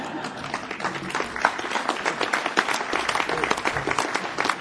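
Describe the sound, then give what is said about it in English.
An audience applauds steadily, with dense overlapping claps forming a bright, even wash of sound that holds at a moderate level for several seconds, with no talking. “But the impact, well, you can applaud for that.”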